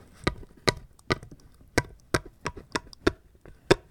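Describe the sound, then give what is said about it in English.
A series of about nine sharp, crisp clacks as teeth bite down on a hard object, a Flip Grip, during a bite test, coming in a loose, slightly uneven rhythm with no talking. “Let's hear it on my teeth.”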